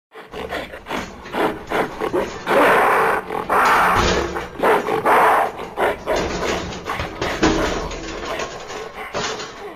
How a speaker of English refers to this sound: But the gorilla was not happy. As Bernal and his accomplices prepared themselves for takeoff, the gorilla growled and grunted, throwing himself aggressively against the side of his cage.